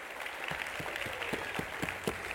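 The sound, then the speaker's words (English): A group claps hands to the Lord in a steady, lively burst of applause, with sharp individual claps standing out in a quick, fairly regular rhythm over a dense wash of clapping. “Let's clap our hands to the Lord today one more time.”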